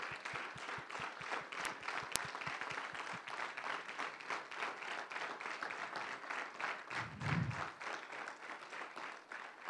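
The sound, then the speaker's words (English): A standing audience applauds a man and his wife, with many hands clapping in a dense, continuous patter that holds for the whole stretch, a few sharper claps standing out early and a brief low thump near the end. “Let's stand and give them a hand clap.”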